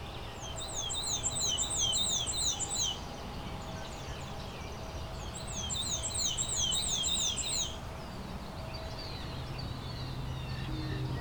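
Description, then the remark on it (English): A black-and-white warbler sings twice, each song a thin, high, squeaky run of rapidly repeated two-note phrases, heard against a steady background hiss. “The black and white warbler is striking in both its pattern and behavior.”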